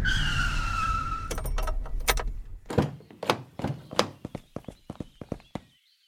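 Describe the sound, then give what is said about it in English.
A car brakes hard after running over a pigeon on the road, tires screeching over a low engine rumble for about a second before it halts, followed by a string of sharp clicks and knocks. No one speaks. “Stop the car. Stop the car right now.”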